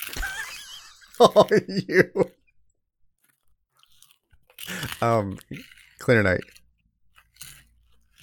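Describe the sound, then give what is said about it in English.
A quick run of about five crunchy chewing bites on cheese balls, loud and rhythmic, followed by a pause and then two short bursts of a voice. “I see you have cheese balls there.”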